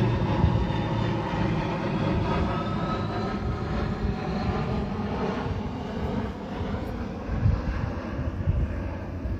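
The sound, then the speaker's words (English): A loud airplane roars steadily overhead on a beautiful day, its engine drone sustained and broad with wavering harmonic tones, filling the whole stretch with no pauses and no voices. “Look at the plane or whatever.”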